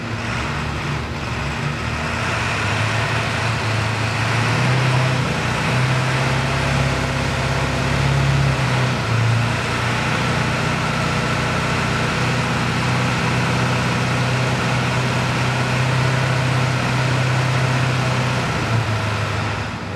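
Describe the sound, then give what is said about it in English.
A big 7.3 diesel truck engine runs steadily at the Diesel Power Challenge 2019, a deep throbbing rumble with a slight rise in revs early on, then settling back into a loud, rough idle for the whole stretch. “Who needs common rail injection when your truck sounds that good?”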